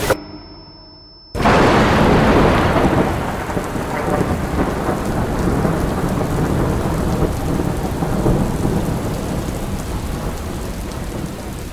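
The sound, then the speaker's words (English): After a brief hush, a sudden loud clap of thunder breaks in, followed by a steady, dense roar of heavy rain pouring down at an outdoor music festival, with no voices. “Rain doesn't just come down. It comes everywhere. It comes straight in.”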